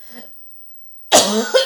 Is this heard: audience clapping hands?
no